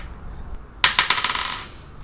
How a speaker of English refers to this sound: Like, oh no, I dropped my dice. I guess I'll have to roll again.